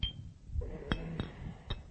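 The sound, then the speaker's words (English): A small rock clinks against the inside of a glass three times at uneven intervals, each tap bright and ringing briefly, with soft rattling and low rumble in between. “My mom warned me that I might break these if I put the rock in them, but that's what happens.”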